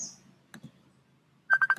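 A phone starts ringing for an incoming call from a cousin, a quick burst of four bright, steady-pitched electronic beeps, after a couple of soft clicks and a low background hum.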